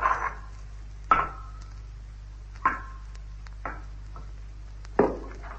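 A loose rock fragment from the edge of a circular pit tumbles down toward water, striking five times in sharp, irregular knocks, each with a short ringing decay, over a steady low hum. No voices.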